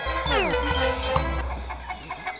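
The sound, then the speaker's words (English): Chickens cluck, trying to mimic the squeak of dry erase markers, a burst of squawky, squeaky calls that slide in pitch, followed by a few softer clucks over a low background rumble. “It seemed like that the chickens, or poultry, as it were, knew the sound of the dry erase markers and tried to mimic the sounds.”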